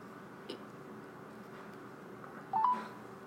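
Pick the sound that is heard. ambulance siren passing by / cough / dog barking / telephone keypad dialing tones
telephone keypad dialing tones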